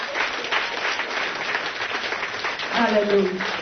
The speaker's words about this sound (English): Come on, clap them hands and praise the Lord.